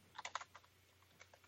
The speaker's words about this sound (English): stop typing.